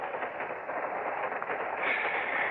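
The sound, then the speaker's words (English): A train rolls steadily along the rails, a continuous rumbling roar with faint rhythmic clatter, fairly loud throughout with no voices. “Crummy train, no privacy.”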